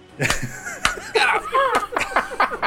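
A few sharp hand slaps land at irregular intervals, cutting through a busy stretch of excited voices and snickering laughter that fills the gaps between them.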